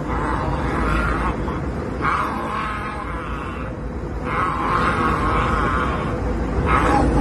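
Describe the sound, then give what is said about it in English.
A man growls in long, rough, guttural bursts, his voice imitating a snarling animal, with brief pauses between each loud, rumbling growl. “I would growl back.”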